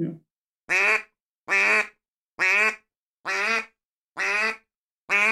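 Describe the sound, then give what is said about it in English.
A duck call blows six flat quacks at a steady, unhurried rhythm, each a buzzy, nasal note with short silences between, loud with nothing else around. “This is a flat quack.”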